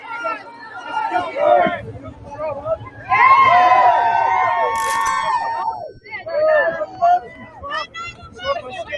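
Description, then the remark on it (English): A crowd at a political rally for Trump: many voices shouting and cheering over one another, swelling into a loud, sustained roar midway before breaking back into scattered calls. “Look at that crowd, guys.”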